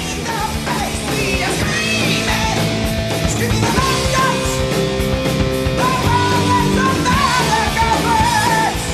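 A loud, dense heavy metal track with pounding drums and distorted guitars, topped by a high, piercing screamed vocal that sustains and bends its notes throughout.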